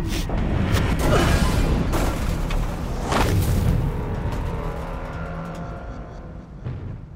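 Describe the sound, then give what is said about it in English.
A spaceship with a cracked hull and a failed engine crashes: a loud, heavy impact, a roaring rumble with sharp bursts of crunching and banging that gradually subside into a fading mechanical drone, with no voices. “Engine's down. Mayday! Mayday! Mayday! What's happening? Are we there? Brace for impact.”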